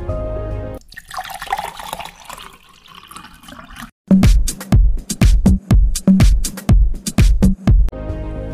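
Water runs from a tap with a steady hissing splash, then turns into a quick series of loud, rhythmic gurgling bursts, with no one speaking.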